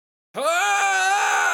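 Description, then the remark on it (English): After a brief silence, a loud, strained male scream bursts in and holds steady for over a second, like a raw battle cry from a video game character lunging into an attack. “He, like, screams and attacks Unalesca”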